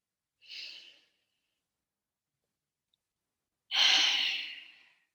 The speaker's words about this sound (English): We just do this, holding firmly on our head. And just breathing in this position.